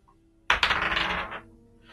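Dice tumble and clatter across a hard tabletop, striking other dice, during an attack roll in a tabletop role-playing game, in a quick burst of bright rattling clicks, loud, lasting under a second before settling into quiet.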